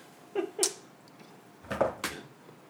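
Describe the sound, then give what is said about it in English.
A cat named Gracie Lynn eats food that she found, with soft crunching bursts in two pairs separated by a quiet pause. The sounds are faint and there is no talking. “"Eating food that she found."”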